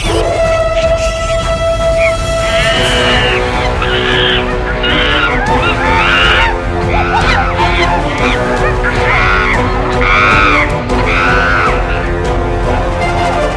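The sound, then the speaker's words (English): Loud, harsh screeches from a dozen or more attacking monkeys tearing at a tree burst out over and over in a rapid, frantic series, layered over a constant low rumble, with a steady high tone fading just before the screeching begins. “Then the monkeys commence their attack.”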